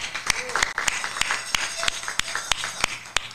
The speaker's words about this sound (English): Let's give a hand clap for that.